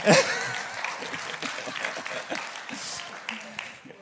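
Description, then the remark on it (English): An audience claps steadily for about four seconds, a dense, crackling patter of many hands that stays fairly even, with some voices mixed in underneath. “Now your clapping has thrown me all off, but thank you.”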